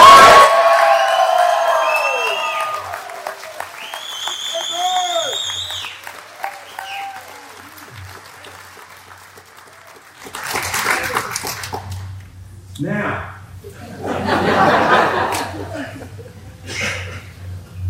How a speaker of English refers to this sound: The sound of the amen echoing in the air.